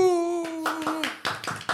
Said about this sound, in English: Clap for yourself.